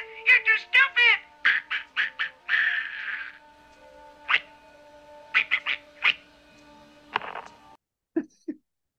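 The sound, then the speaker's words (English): A squawky, duck-like quacking voice jabbers in rapid bursts of nasal syllables, pausing between clusters, then a few short squawks at the end. It is a man making duck noises in a movie scene. “I find his duck noises fucking hilarious.”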